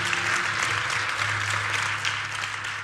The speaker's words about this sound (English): Can we give a round of applause to our praise team?